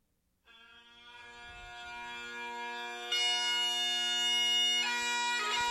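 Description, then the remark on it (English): Bagpipes played by a man walking alone at about 10:30 or 11 on a Sunday night start up after a brief moment of silence: a steady, buzzing drone under a loud, reedy melody that shifts pitch a couple of times and builds slightly. No one speaks. “because this guy is walking by himself playing the bagpipes. Yep, this is the exact song I heard, and I'm thinking, what the fuck is this?”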